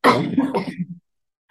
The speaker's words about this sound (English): Sorry, I'm just going to cough.